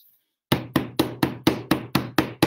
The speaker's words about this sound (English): A hammering upstairs.